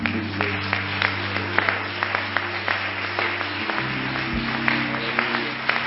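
An audience at a church service breaks into steady applause, a hand clap for God and the work in Lebanon, many hands clapping in a dense, continuous patter with sharper individual claps popping out, over a low sustained hum throughout.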